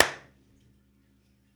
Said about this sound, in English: Clap. Oh, we got a clap. Okay, so this ain't gonna be in there.